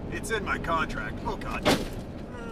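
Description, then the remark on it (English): A giant tumbleweed smacks into the front of a moving truck with one sudden, loud brushy crunch, heard over a steady low road rumble while people talk inside the vehicle. “So if anybody's wondering what that noise was, that was a giant-ass tumbleweed running into the front of our truck.”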